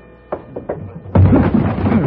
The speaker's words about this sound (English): Everything was quiet inside the cabin. Outside, the snow had stopped and it was getting colder. I knew I'd have to force my way through the door,